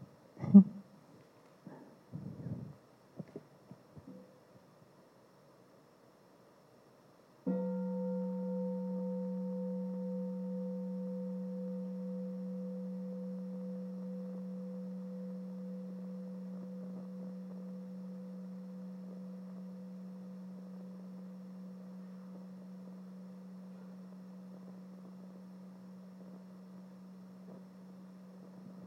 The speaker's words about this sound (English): Maybe we have a bell.